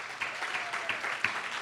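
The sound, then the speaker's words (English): A church audience at RCC applauds its standing leaders for a weekend of excellence. Many hands clap in a steady, dense wash at an even, moderate level, with a few sharper claps standing out and no voices over it. “I'd like for you to join me in giving them a hand of applause for this weekend of excellence.”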